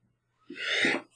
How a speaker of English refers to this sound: Excuse me. Did you sneeze? I did. Thank you.